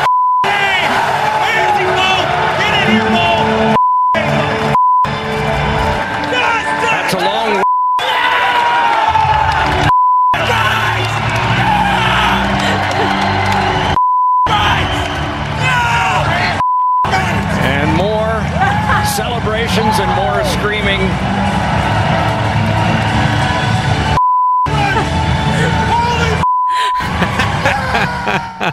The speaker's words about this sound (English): So this is from when the St. Louis Blues beat the Boston Bruins, Game 7 of the Stanley Cup. Listen to all the beeps in this.